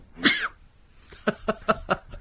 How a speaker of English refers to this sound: Have you ever thought of having, like, a manly sneeze?